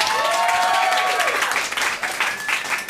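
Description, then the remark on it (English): An audience gives the performers a round of applause, loud and steady, a dense wash of many hands clapping at once, with a few whoops and cheers rising above it. “Okay, so we're going to give you guys a round of applause and bring you back out to answer some audience questions soon.”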